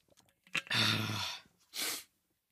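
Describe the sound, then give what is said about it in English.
A loud slurping sip of water lasting under a second, followed after a short pause by a breathy exhale. No talking. “One more sip.”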